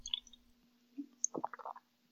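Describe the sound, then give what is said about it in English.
A brief wet slurp of someone sipping Pilsner beer: a soft click, then a quick cluster of squishy gulping sounds lasting about half a second, fairly quiet over a low steady hum, with no talking. “Can you stop taking a sip right before you talk?”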